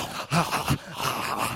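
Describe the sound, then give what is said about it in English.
A voice imitates a bulldog's low growl in two or three rough, throaty bursts, fairly loud, trailing into a breathy rasp. “There was a kind of bulldog back there going like this.”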